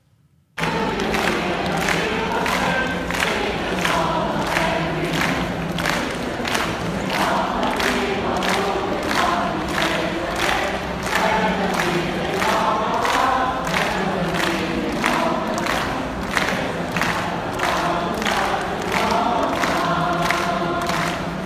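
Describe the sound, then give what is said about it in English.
About 1,000 people sing a protest song together in an airport in Hong Kong, loud and sustained from start to finish, with a steady rhythmic beat pulsing under the massed voices. “there is like 1,000 people singing that in the airport.”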